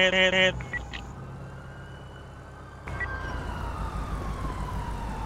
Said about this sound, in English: That ambulance is moving.